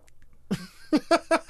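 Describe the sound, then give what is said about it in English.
Coors Light beer being sipped: a short slurping draw followed by four quick, evenly spaced gulping swallows, fairly loud and with no one talking. “Here, take a sip of this Coors Light.”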